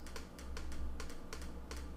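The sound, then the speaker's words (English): Quick, uneven computer keyboard clicks, roughly a dozen keystrokes in two seconds, tapping away fairly quietly over a low steady hum with no one speaking. “Ignore the clicking sounds.”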